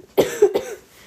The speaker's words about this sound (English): You may remember the last episode, I had a coughing fit. I feel completely fine, but the tickle will not leave me, so much less intense this time, but I apologize for still a little coughiness.